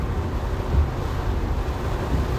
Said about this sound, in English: I love the rain. I love the sound of it.